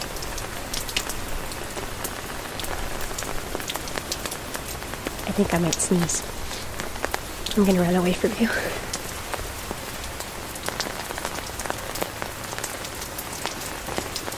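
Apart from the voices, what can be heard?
rain falling outdoors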